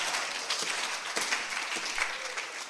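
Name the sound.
church audience clapping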